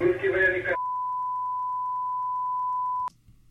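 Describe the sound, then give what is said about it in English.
A sustained, steady electronic tone, like a heart monitor flatlining, added by CNN to a news segment, holds for a couple of seconds right after a brief burst of voice, then cuts off abruptly. “CNN put that long beep in there on purpose to add the whole dramatic to it.”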